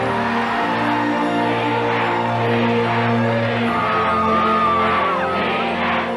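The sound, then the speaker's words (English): A large stadium crowd at an NFL game chants 'G-Man' in unison for a player's debut, a loud sustained roar of many voices with rhythmic swells and scattered yells and whoops rising above the din. “And the crowd here in the bed is chanting G-Man.”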